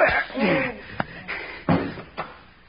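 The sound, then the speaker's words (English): A few sharp, heavy thuds land like punches in a brief scuffle, with a short grunting vocal sound at the start and the final blow, a one-punch knockout, ringing out loud. “you knocked him out. With one punch.”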